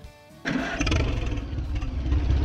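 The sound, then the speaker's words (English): The engine of a classic Silver King tractor, made in Plymouth, Ohio, cranks and catches at about half a second in Rising Sun, Ohio, then settles into a loud, steady, rumbling chug, with no one talking. “This week we're off to Rising Sun, Ohio to check out a classic Silver King tractor.”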